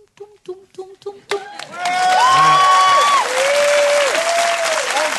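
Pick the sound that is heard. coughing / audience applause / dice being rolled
audience applause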